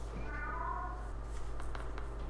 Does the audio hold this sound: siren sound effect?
no